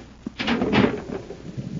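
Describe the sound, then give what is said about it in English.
A concealed door in a sub-basement grinds open with a rough, rumbling scrape that swells for about a second, then fades into a low shuffling rattle. Fairly loud, with no voices. “There's a concealed door here.”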